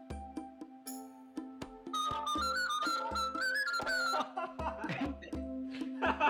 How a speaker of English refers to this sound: As all of my performance starts, it starts with this whistle.